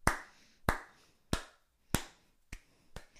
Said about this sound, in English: That was a round of applause.